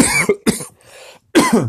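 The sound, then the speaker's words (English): A person coughs in several harsh, raspy bursts with brief gaps between, a choking fit after swallowing wrong, with a quieter wheezy breath in the middle and no speech. “Wrong tube.”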